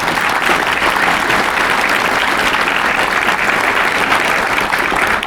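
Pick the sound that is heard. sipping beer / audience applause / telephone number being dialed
audience applause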